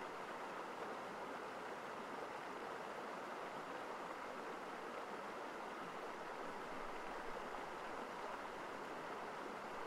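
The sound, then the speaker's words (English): A babbling stream flows steadily into the east side of a mountain lake, a continuous, even wash of rushing, bubbling water that never pauses or changes much, fairly soft and with no voices. “A joyful stream feeds into the east side of the lake, creating a beautiful, calming, natural song for the ears.”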